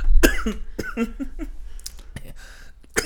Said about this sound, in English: I'm coughing like crazy. Get some cough drops, man.